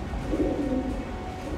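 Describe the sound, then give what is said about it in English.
Homing pigeons, carried in a basket during the Allied landing and homed to Southampton, coo in soft, low, throaty warbles, a rolling burble that swells briefly then settles, over a steady low background rumble with no voices. “They were homing pigeons whose home was in Southampton”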